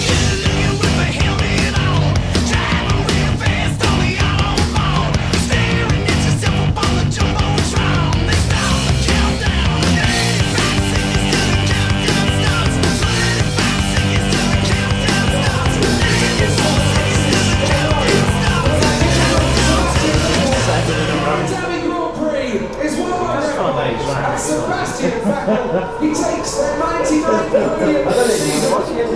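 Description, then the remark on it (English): Fireworks explode over the Abu Dhabi race track at the 2013 Abu Dhabi Grand Prix, a loud continuous wash of crackling and popping bursts, with dense layered noise that turns into rougher irregular bangs and crackles near the end. “There we go then, and the fireworks starting to explode over the Abu Dhabi track.”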